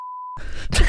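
A single steady, pure-toned censor bleep lasting about a third of a second, bleeping out the name of a website, cut off abruptly and followed by a brief burst of rough, muffled noise.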